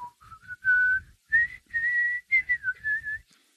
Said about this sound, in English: The whistle and just think. I think of somebody that's leaving town, like he's done with the show, he's leaving. Yeah, the whistling. There's like a tumbleweed in the street.